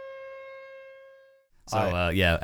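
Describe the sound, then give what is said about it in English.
A steady, droning air raid siren going off after an airstrike holds one mid-pitched tone for over a second, slowly fading, before a person starts talking loudly over the end. “After we had an airstrike happen, the alarm went off.”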